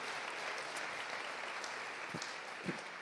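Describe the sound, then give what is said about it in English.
An audience claps steadily, a dense wash of many hands that holds at an even level throughout with no voices over it. “And yes, give him a clap too.”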